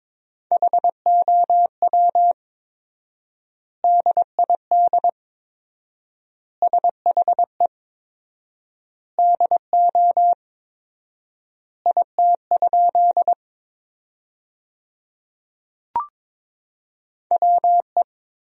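Morse code at about 22 words per minute, sending sentences built from the top 100 words with 4x word spacing: a steady mid-pitched tone keyed in quick dots and dashes, clustered into words separated by long silent gaps, with one brief click and no talking.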